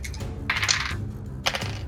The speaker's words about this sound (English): this is where we are all going to roll for initiative. Okay. So, everybody, roll me some dice and tell me what you get, please.